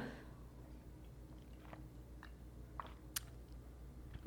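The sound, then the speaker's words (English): Someone drinking water: faint sips and swallowing with a few soft, scattered mouth clicks over a low hum, then a brief dull thump at the end. No one speaks. “Excuse me, let me drink some water.”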